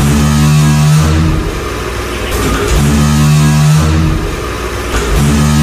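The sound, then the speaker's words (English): A big metal door groans open with a loud, low, rumbling drone that swells and dips in a repeating cycle, its steady grinding tones rising again every few seconds. “That's a big metal door, right?”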